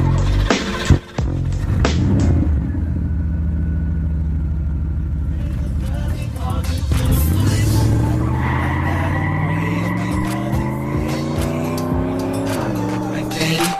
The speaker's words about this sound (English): Y'all, I'm cranking this car up. I gotta go.